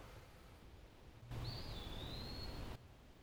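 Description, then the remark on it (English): A wood-pewee, a small drab bird with grey markings, gives one long, slurred, high whistle from the treetops while calling for a mate, thin, rising then gently falling over a steady hiss of background noise, with no voices. “What we're listening for is a bird that actually says its name at the top of its lungs. It's screaming, "Pee-wee!”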